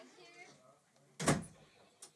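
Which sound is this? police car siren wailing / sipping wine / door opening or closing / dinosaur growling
door opening or closing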